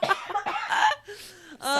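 A person coughs several times in quick succession, close to the microphone, with short harsh bursts followed by a softer breathy sound.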